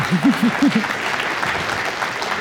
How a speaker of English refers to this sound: That's when you clap.